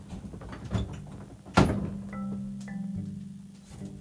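A dog named Jenna bumps a house door open with one solid thump partway through, followed by a low steady hum and faint creaks; no one speaks.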